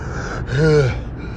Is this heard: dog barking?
no